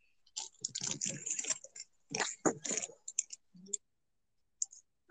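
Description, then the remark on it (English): A female dog gnaws on a plastic water bottle in an office, producing bursts of sharp crackling and crunching clicks in irregular clusters, with brief pauses and a few softer isolated crinkles toward the end. “Bitch has a full plate of food, but yet she chooses to eat the water bottles.”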